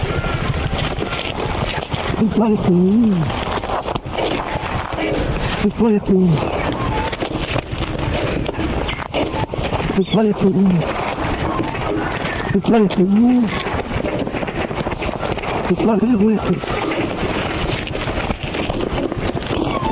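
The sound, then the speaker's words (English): An Australian duck mimics the gruff human curse "You bloody fool" in a low, speech-like croak, repeating it about five times at intervals over constant wind and water noise outdoors. “This is Ripper the Duck saying, "You bloody fool."”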